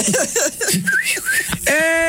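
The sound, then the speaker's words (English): A wolf whistle at women from ships cruising up and down the shore: a short rising-then-falling whistled tone over a background of vocal sounds, followed by a loud, steady, buzzy tone held to the end. “They're just going up and down the shore whistling at women.”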